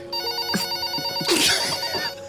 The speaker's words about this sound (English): Is it ringing? Okay, yeah, it's ringing.